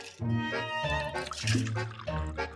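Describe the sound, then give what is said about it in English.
Water pours into a glass in a steady stream with a bubbling, gurgling tone that rises in pitch as the glass fills. It is heard on its own, with no talking. “Forgot to pour the water as I was drinking it.”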